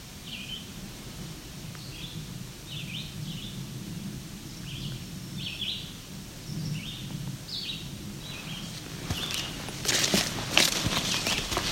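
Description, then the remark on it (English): A red-eyed vireo sings short, repeated phrases at a steady pace in the background, moderately faint, over low rumbling footsteps, with a burst of rustling clatter near the end. “Red-eyed vireo, of course, as our background bird.”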